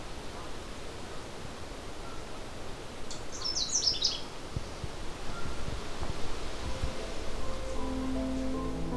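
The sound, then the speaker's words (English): A Canada warbler sings one quick, jumbled burst of high warbling notes from thick trees and shrubs on an overcast day, over a steady hiss of wind and rustling foliage. “I find Canada warbler love very, very thick areas full of trees, shrubs.”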